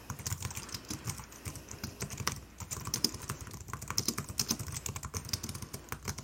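Paper packaging crinkles and rustles as it is handled while tea items, a small tea kettle and a tea steeper, are packed into a box, a dense run of quick, crisp crackles and taps that keeps going steadily for several seconds with no voices.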